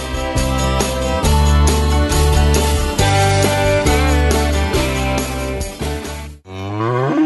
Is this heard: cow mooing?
yes